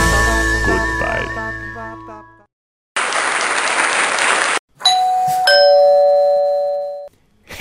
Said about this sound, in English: Wait, there's the doorbell again.